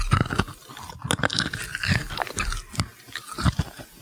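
Wet chewing and crunching of small hard Pez candy, with irregular clicks and smacking bites repeating steadily for a few seconds, no talking.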